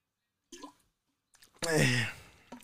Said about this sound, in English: Let me get a drink of this water here. Oh man.